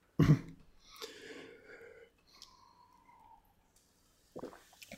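A sip of water with wet mouth noises and a soft swallow, then a quiet gulp-like tone and a small clunk near the end, no talking.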